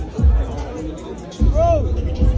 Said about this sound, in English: Concert. No. Crowd going wild, time to jump. Here we go.